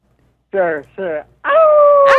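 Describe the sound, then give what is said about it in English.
A person imitates a wolf howl: two short, wavering yips, then one long sustained howl that holds steady before breaking off at the end. “Can we get a howl?”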